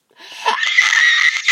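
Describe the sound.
A person imitates a pterodactyl screech: a sustained, shrill, raspy squeal lasting over a second, loud and high-pitched with a harsh, strained edge, and no talking over it.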